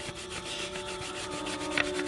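Soft, scratchy shading on paper with a 6B pencil, coloring the horns of a drawing: quick back-and-forth strokes in a steady, even rhythm, with a slightly sharper scrape near the end and no voices.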